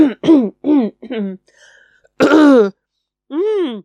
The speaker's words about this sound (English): Oh, coughing, sorry. I hope it's not coronavirus.